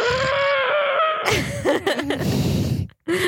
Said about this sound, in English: Commence heavy breathing.